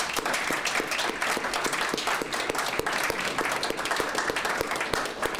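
An audience gives a warm round of applause at the end of a talk, many hands clapping in a dense, even patter that holds at a consistent loudness for several seconds, with a few sharper individual claps standing out.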